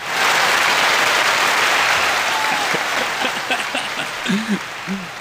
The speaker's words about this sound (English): Applause.